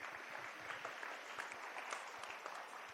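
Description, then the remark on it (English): Steady applause from an audience, a dense wash of many hands clapping continuously, with no pauses or voices over it. “And so the Bible tells us then, yes, you can give him applause.”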